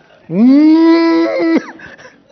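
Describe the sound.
A single loud cow moo holds one steady, droning pitch for over a second, then drops off abruptly, leaving a quiet background.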